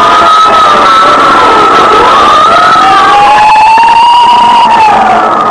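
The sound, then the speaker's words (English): Loud fire engine sirens wail continuously, their overlapping tones sliding up and down in long sweeps, with a faint crowd murmur and traffic rumble underneath. “Every time I hear fire engines at night, I think of Harrison Murdoch and the Chantilly case.”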